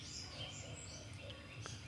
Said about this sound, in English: So here I am in his backyard, his wonderful scenic backyard near a pond. We have a citronella candle lit for the mosquitoes, and you can potentially hear the distant sounds of dogs barking and birds chirping.